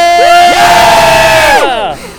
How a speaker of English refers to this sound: We gotta yell again to get his attention.